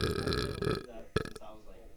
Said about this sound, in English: That's what, impressive. Burp? Was that in the mic?